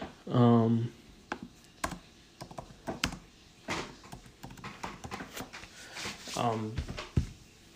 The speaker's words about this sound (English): Let me try searching up things. You could probably hear that clacking and typing.